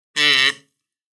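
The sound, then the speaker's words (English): A single short kazoo 'burp': a loud buzzy tone with a rich, raspy edge that lasts about half a second and then cuts off into silence. “The power that I feel picking up this kazoo case.”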